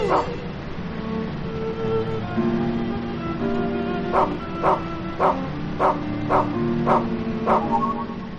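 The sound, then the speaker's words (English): A dog bark sound effect repeats about seven times at an even, mechanical pace over background music, each bark identical and sharp, starting partway through after a stretch of music alone. “Something about the repetitiveness of that bark that's just like, okay, now it's just an effect on a keyboard.”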